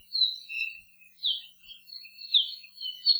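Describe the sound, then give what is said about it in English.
An introduced bird species in Hawaii sings a continuous run of thin, high warbling phrases, bright, rising and falling in short bursts with no pauses longer than a moment. “They do sometimes make it into our native forests, where they likely spread a variety of weeds and compete for resources with some of our much rarer native birds.”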